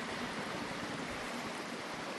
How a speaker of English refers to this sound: If you listen now, there's nothing but birds and water.